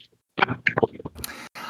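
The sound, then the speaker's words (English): Loud banging on the door of a bedroom at an academy: a quick, irregular cluster of heavy thuds, followed by a short stretch of rough, scraping noise that cuts off and then resumes. “The banging you're hearing is from your door.”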